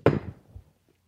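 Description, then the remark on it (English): A door shuts with one solid thud, a broad knock that decays quickly, followed by a softer low rattle or bump as it settles, then quiet. No one talks. “I'm going to close the door while you tell me more of the other liquor.”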